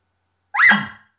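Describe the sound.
A single short, loud bark blown forcefully on a latex reed call with the tongue against the reed, the first part of the call, rising sharply then trailing off in under half a second, with silence before it and no talking.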